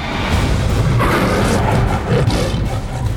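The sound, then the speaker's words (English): A loud, rough jaguar roar rumbles continuously for about three seconds, deep and gravelly with a noisy, booming texture and no speech. “The jaguar roared and rushed forth.”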